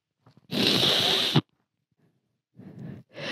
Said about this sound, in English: Achoo! Sneeze town.